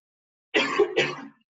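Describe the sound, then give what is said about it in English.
Two quick dry coughs in a row, fairly loud, with a rough throat-clearing rasp and a short silence before them; nobody speaks. “I've just got a dry throat, I know. Just a cough.”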